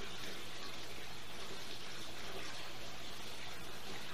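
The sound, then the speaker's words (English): Glenmorangie Scotch whisky swirling inside a glass, a soft, steady watery rush that carries on without pause for a few seconds, fairly quiet, with no one speaking. “Got a little swirl.”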